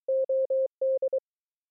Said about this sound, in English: And so this is Morse code pitched to the key of the song. And what it says is, this is what I have to offer, a merely good but wonderfully freeing response.